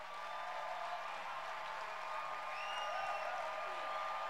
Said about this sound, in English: So can we clap our hands for our pastors?